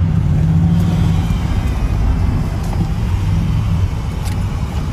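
A car engine drones loudly and steadily with a heavy low rumble, like a vehicle moving at speed on a highway, continuous for the whole stretch with no voices.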